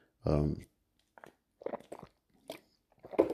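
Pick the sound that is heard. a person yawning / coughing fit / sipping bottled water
sipping bottled water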